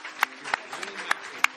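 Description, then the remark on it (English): A handful of sharp, scattered claps, about four distinct ones, ring out over a steady murmur of voices, like brief, light applause from a small audience, given for the cast and crew. “Let's give a big round of applause to the cast and crew and everybody.”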